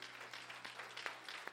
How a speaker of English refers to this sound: I just want you to just clap your hands and give God the glory. I just want you to clap your hands and give God the glory.